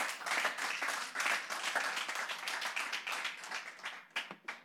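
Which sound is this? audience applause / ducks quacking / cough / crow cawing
audience applause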